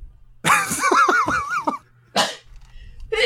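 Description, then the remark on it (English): A single loud sneeze: a wavering, voiced intake lasting about a second, then a brief pause and a sharp, hissy burst, followed by a faint sound at the end. “Bless you.”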